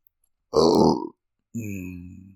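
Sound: burp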